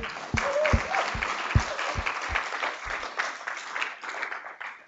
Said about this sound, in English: So round of applause for Raul.